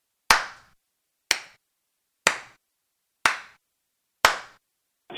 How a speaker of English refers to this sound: Okay, my dog doesn't like that I'm clapping anymore.